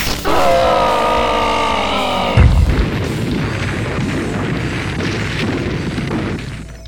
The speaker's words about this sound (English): Infra-Dan unleashed a quick flurry of electrified punches, with the last one firing a lightning bolt that launched Jijugwai backward into a cliff face, which crumbled on top of him.